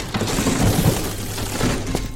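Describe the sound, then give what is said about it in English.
A loud, crashing impact of a pub door being smashed open by a group of armed people, with splintering and rattling debris over about two seconds and no voices. “It was then the door to the squid was smashed open.”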